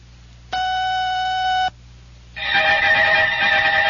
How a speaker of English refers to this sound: This is WOR 710 and WOR FM New York, owned and operated by RKO General at the WOR time signal exactly 1 o'clock.